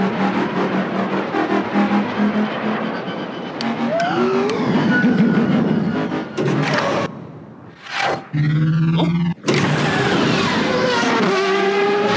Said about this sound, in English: just selling you this absolutely ridiculous idea of a bunch of aliens in this desert drag race going on. Being pulled by giant floating engines. Beautiful.